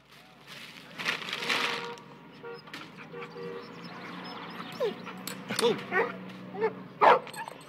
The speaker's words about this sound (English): Oh. Look at the cute dog.